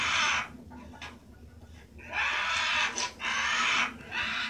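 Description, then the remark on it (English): A crow in a film scene gives a series of loud, harsh, raspy caws, with short gaps between the drawn-out calls and a low rumbling background underneath. “Now look how this bird communicates.”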